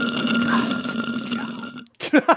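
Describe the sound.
A long, wet slurping noise with a low, buzzy tone runs steadily for almost two seconds, then cuts off abruptly before a short burst of someone talking.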